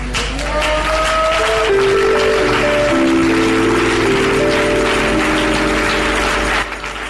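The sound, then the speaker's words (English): A crowd claps loudly and steadily for several seconds, a dense wash of applause with sustained keyboard or organ notes playing underneath. “Those who are clapping, I see a miracle coming your way.”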